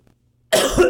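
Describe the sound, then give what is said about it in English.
A single loud cough bursts out after a half-second of near silence, harsh and breathy across the whole range; a man coughs straight into the microphone without covering his mouth. “He coughs into the mic.”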